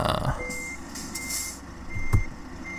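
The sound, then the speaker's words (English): A truck engine starts and rumbles low and steady in a truck driving game, the truck at a hotel parking lot with its parking brake engaged, with intermittent high-pitched beeps sounding over it and a brief thump near the end; no one speaks. “I want to start the car. The truck.”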